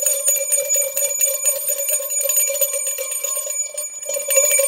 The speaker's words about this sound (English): So it's a one bell Wednesday.